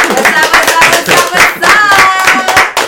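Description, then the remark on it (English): A burst of applause from a small crowd welcoming a special guest, steady overlapping clapping for a few seconds, loud, with some whoops and voices mixed in. “Give a round of applause for Nat Attack.”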